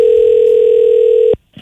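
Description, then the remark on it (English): A loud, steady telephone dial tone of an outgoing phone call holds a single unbroken pitch for over a second, then cuts off abruptly, leaving near silence with a faint click at the end. “Here is my call”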